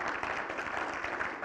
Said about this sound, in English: likes to clap a lot, so I need to write in the places that he's going to do that.